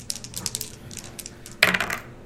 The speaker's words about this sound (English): Just roll a die.